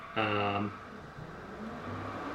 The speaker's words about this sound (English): Oh, that was a car. That was a weird fucking monster. It was a small dick horse driver. Oh my god, that was such a weird noise.